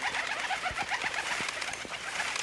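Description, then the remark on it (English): A flock of cormorants shrieking overhead as it sweeps over Kiefer Gorge, a dense, steady chorus of overlapping harsh calls with short repeated bursts, fairly loud throughout and with no voices. “A flock of cormorants swept by and blocked the sun, turning the blue waters of Kiefer Gorge black.”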